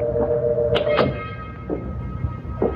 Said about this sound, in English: Then, close to midnight, I heard the door open downstairs.